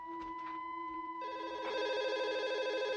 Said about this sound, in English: We're sitting there having dinner. Just as we start dinner, my phone rings.